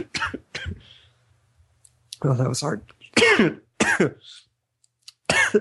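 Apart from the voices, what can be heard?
coughing and throat clearing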